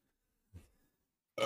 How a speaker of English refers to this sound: Excuse me, I've belched.